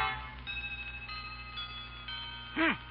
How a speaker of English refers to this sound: A chiming clock is heard as Grandma consults the old-fashioned watch dangling from a chain around her neck.